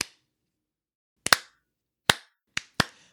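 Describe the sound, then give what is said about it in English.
A slow clap by the character Chang: about six sharp, crisp hand claps spaced out unevenly with long gaps, one pair landing close together, each snapping loudly then fading fast, with no voices. “But at the end, Chang does do the slow clap, and it does catch on this time.”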